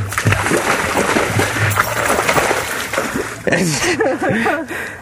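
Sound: dog splashing in water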